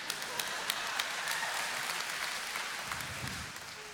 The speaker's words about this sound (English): that was like that slow wave of clapping. Like it starts on one side of the room and it's slow. I like those. It always starts on this side.